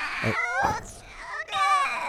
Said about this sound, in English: You're really crying. Yes.